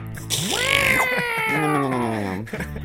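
A single long, drawn-out cat meow, rising sharply and then sliding slowly downward over about two seconds. It is loud, with no talking over it.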